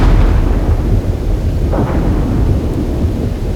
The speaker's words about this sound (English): At one point, this big bolt of lightning comes down and it is not far from you.